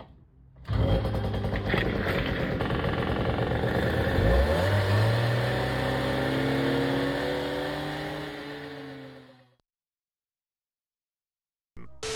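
A small moped engine roars to life and revs up, its buzzing pitch climbing and then winding down over several seconds before cutting out into silence.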